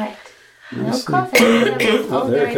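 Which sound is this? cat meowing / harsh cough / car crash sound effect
harsh cough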